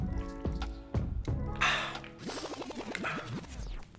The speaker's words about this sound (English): I'm gonna drink this water. I'll be talking, spitting facts. My mouth be dry.